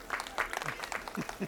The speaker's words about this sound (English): Now, the king lowers himself into the water. Instantly refreshing, it's a blissful moment, and he laughs out loud as his staff and workers cheer and applaud.